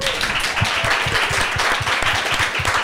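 A room full of people applauding, steady dense clapping at moderate loudness that continues throughout without any voices rising above it.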